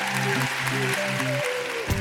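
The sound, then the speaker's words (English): An audience applauds the women who shared their stories, in a steady, dense wash of clapping that runs the whole time, with a simple melodic music line playing over it. “Would you all give these ladies a round of applause?”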